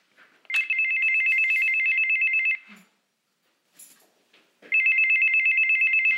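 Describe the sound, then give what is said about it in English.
An electronic doorbell rings in two long, loud bursts of a steady, high-pitched buzzing tone, each about two seconds, separated by a short quiet gap. “The first episode is all about the doorbell.”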